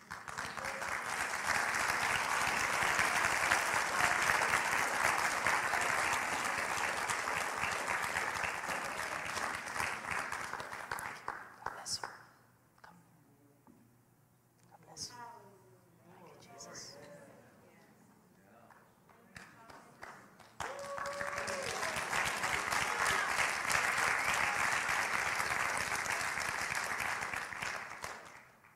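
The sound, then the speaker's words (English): A crowd breaks into loud, sustained clapping for two people who came forward. It fills the first ten seconds, drops to a lull with a few scattered claps and murmurs, then swells again into dense applause. “Let's clap for them.”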